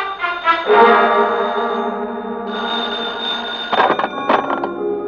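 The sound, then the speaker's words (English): A telephone rings loudly with a sustained, buzzing bell tone, followed by a couple of short, sharper rings near the end; no one speaks. “I grabbed the phone and listened.”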